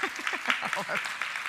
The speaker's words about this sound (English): I get a clap as well. It's not just my husband. Thank you very much.